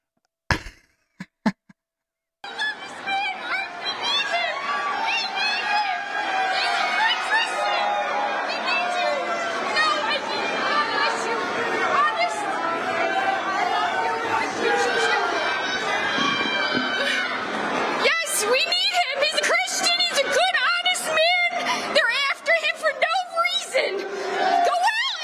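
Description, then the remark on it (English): A large crowd in Philadelphia boos Donald Trump loudly and continuously, a dense wall of jeering voices with scattered shouts mixed in, starting abruptly after a few brief knocks and carrying on for over twenty seconds. “Wait, this is Philly. They're booing him.”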